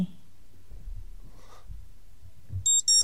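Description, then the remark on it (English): A timer alarm goes off near the end: two short, loud electronic beeps in quick succession, following a few seconds of near-silence with faint low rumbling and handling noise. “The official timer of Wave of Absurdity Master Debater.”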